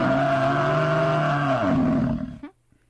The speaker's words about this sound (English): Buffalo? congratulations. You are absolutely right. It is a buffalo, and this is what it sounds like.